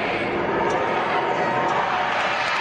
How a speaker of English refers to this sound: The crowd of about 1,500 spread out and masked up across Times Square, hugged and cheered as the giant ball dropped